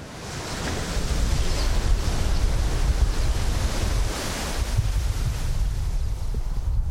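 Steady, blustery wind roars across an open outdoor space on a farm overlooking the sea, with a constant low rumble and hiss, fairly loud throughout, and no voices.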